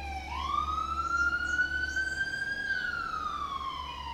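A police siren wails steadily and loudly, its pitch climbing and then dropping as the car passes by, with a low traffic rumble underneath and no voices.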